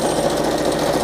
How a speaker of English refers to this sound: And I'm sewing fast. You don't have to sew fast, but you can. Because it's kind of exciting.